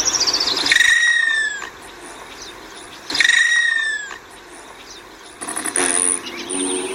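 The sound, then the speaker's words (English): An Allen's hummingbird gives two sharp, high-pitched descending calls, then a short buzzy trill from its outer flight feathers, like a passing bee. Fairly loud, with no talking. “Here's one of the bird's vocalizations and the buzzing bee sound created by its outer flight feathers.”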